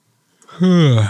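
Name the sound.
yawn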